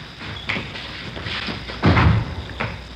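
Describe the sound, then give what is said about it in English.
A door is opened and shut: a few light clicks and knocks from the handle, then one solid, fairly loud thump as it closes, followed by a soft click. “Here, I'll get the door.”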